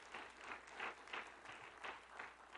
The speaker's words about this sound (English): If you believe what I'm preaching, can you clap your hands and give the Lord praise?